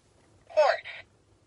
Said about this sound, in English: Horse. I thought that was a pig.